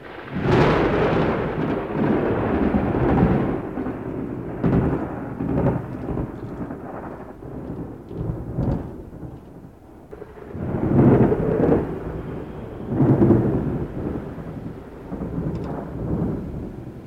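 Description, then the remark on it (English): Heavy rain pours in a steady, dense roar while deep rolls of thunder rumble underneath, swelling loudly twice near the end. No voices, just the storm. “When it rains heavily and thunderstorms bring lightning, there's often a chill of danger and a feeling that nature is a little more powerful than we give it credit for.”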